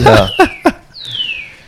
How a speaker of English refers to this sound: So as you hear in the background here, there's a bird in the corner, right? So in my liquor cabinet. Yeah, in the liquor cabinet.